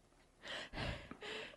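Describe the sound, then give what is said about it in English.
A person imitates heavy panting, producing three loud, breathy huffs in quick succession, each a rough rush of air with no words. “Why am I panting? I just got back from a jog.”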